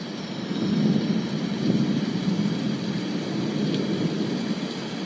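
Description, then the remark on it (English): A steady thunderstorm ambience, played by Alexa as a track by an artist, with a continuous low, rolling rumble and hissing wash of noise, holding at an even moderate loudness throughout with no distinct sharp cracks. “And now she's finally playing the sounds of a thunderstorm.”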